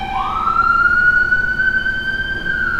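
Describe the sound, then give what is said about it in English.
A loud emergency siren sweeps upward in one long, steady wail over a low rumble of traffic. No one speaks. “Sirens going off?”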